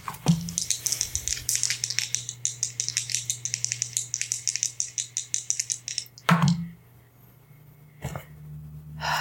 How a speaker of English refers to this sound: I'm gonna try to pick dice that will roll well.